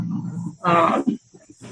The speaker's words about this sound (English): Sorry about that noise. I think it's a snowplow outside my window.